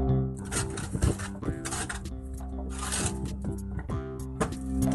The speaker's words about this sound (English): That's what vegetables being raked off a truck sounds like.